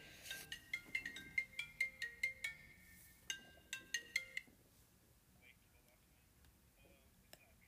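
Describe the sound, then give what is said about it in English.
A phone rings with a quick run of bright electronic tones, about a dozen rapid pulses over four seconds, fairly soft, then it cuts off, leaving faint background noise. “Sorry, I've got a phone call. Hold on a second.”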